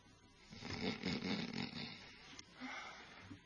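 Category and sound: vocal imitation, imitated snoring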